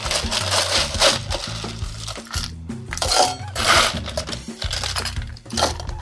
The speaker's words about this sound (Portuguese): Vamos colocar gelo.